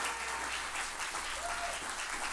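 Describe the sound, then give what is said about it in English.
A church audience claps steadily in sustained applause for the speaker's parents, who came from Atoka, Oklahoma. A dense wash of many hands fills the space for the full couple of seconds, with no one speaking over it. “Come on, give them a hand clap.”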